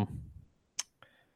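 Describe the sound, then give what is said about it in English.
Three dice clatter onto a hard surface in two quick sharp clicks, the second ringing briefly, landing on a 4, a 5 and a 6. A faint low murmur of voices precedes them. “I got 4 icons because I rolled a 6.”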